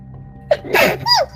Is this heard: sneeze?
yes